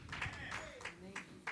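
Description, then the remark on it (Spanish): Scattered applause from a few people: a handful of sparse, irregular claps, fairly loud, with a faint murmur of voices underneath. “Los pocos aplausos me dejan saber que estoy luchando con la razón de alguien.”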